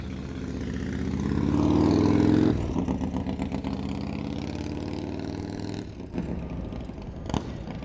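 A motorcycle engine revs up loudly, holds a throaty roar, then drops back to a rough, pulsing rumble with a few brief throttle blips toward the end. No voices.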